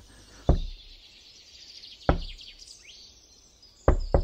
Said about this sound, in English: What the hell? We could hear a sound knocking on that big wooden door. Now, at first, we thought it had to be a raccoon, but maybe it was a person? It was so faint, but a knocking sound.